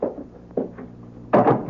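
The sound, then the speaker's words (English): A door swings shut with a few dull clunks and rattles, ending in a louder final thud as it latches. No voices are heard. “Let me close the door, huh?”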